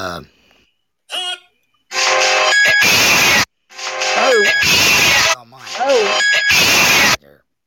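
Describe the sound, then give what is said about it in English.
A phone ringtone blares at high volume, three long harsh, distorted bursts repeating the same pattern, preceded by a couple of short, softer tones. “Yeah, I'm just in my ringtone section. Let me try mine.”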